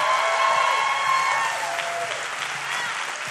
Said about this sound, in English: How about a round of applause for our worship team? Come on, let's go.